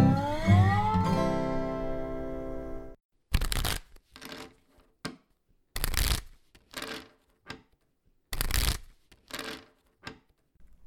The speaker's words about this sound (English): I gotta practice my shuffling skills for the game tonight.